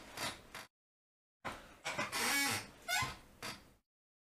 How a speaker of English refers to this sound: Goddamn, my chair is squeaky as fuck.